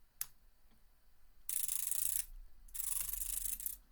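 An Orbit Reader braille display refreshing after its power button is pressed and held: a single click, then two short bursts of rapid, dense ticking, like a soft crisp rattle. Fairly quiet, with no talking.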